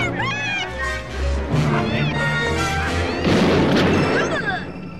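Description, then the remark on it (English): An explosion sound effect: a deep boom early on, then a louder, noisy burst of crashing debris, set against swelling tonal, voice-like sounds throughout. “Just blasts him in the chest through a hole. Explosion.”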